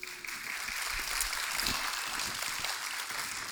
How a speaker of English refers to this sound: And so I would like for you guys to give a warm applause to my sibling expert